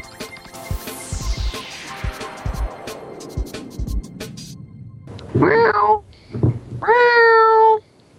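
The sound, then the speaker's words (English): Someone imitates a cat with two loud, drawn-out meows, following a long falling whistle-like sweep and a few soft taps. “I'm a cat. Justin, let me in. Justin, I'm sad.”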